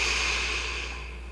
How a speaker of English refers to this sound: As you shift your attention from whatever you're doing prior to this, I'd like to invite you to begin breathing in and out through your nose. A slow breath in.